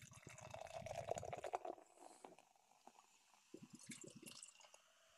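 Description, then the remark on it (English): Beer glugs into a glass for a couple of seconds, fairly loud, then trails off into softer fizzing and bubbly sloshing toward the end. No one speaks. “Even just from pouring this, I'm getting that aroma hit me in the face.”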